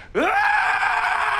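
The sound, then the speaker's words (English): A single loud, cathartic scream of love bursts out, sweeping quickly upward in pitch and then holding as a sustained, strained cry without any words. “That was a cathartic scream of love.”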